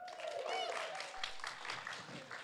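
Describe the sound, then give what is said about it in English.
An audience claps and cheers steadily for a woman invited up to read the scripture reading, a dense wash of applause with a few high whoops and whistles rising above it, continuous for a couple of seconds. “Give her a cheer, please.”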